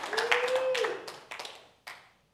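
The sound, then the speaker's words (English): A short burst of crowd clapping and cheering, with a sustained shout or whistle at the start, then scattered claps that thin out and fade to silence. “They're cheering us on.”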